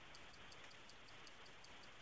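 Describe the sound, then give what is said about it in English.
A game clock ticks in a quick, steady rhythm over a constant hiss during a timed sports trivia round of one minute 35 seconds, the sharp ticks faint but evenly spaced throughout, with no voices. “Starts on my clock.”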